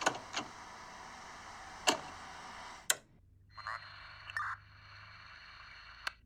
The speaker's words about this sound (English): This green one's my car. Just jiggle the handle a bit.